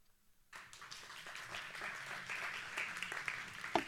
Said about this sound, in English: That's the Wednesday night crowd. They know it's awkward when I take a drink, so they clap so I don't feel so silly.